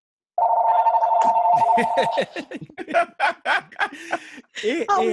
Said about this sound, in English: It happens. Go ahead. It's still ringing. It's all good. And who got a landline?